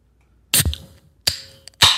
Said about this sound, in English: Dude, that was crisp. That was a good one. Yeah. Usually when I open a can of beer on the mic, it's like a...